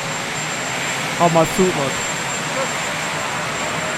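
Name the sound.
helicopter rotor noise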